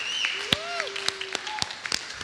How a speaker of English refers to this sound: That's an opportunity to clap right there.